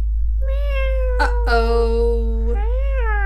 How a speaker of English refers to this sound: Meow. Uh-oh. That was Marmalade, the family cat. All that marching must have made her curious as she began slinking down the stairs into the kitchen.